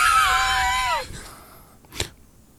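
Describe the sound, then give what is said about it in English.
A voice imitates a dying horse whinnying, giving one long, strained, wavering high cry that slides downward and breaks off after about a second, followed by a brief breathy burst. “That was the horse whinnying, by the way. That was the horse dying.”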